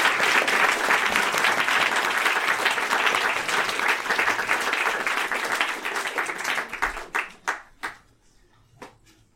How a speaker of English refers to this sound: But first, a warm round of applause for our special guest